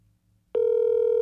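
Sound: phone call ringing unanswered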